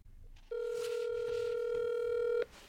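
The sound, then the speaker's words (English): A FaceTime video call rings out: one steady, mid-pitched electronic tone holds evenly for about two seconds and then cuts off, with faint background noise around it. “I'm going to FaceTime her. Can I FaceTime her right now?”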